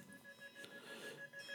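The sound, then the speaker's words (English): A fire alarm beeps in a rapid, steady electronic pulse that repeats without pause, sounding somewhat muffled over a low background hum. “It's a fire alarm.”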